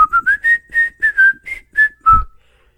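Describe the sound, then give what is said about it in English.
A person whistles a short, lilting tune of about nine quick notes in a bright, steady tone, fairly loud, ending on a slightly lower held note, with no talking. “And I just randomly whistled the”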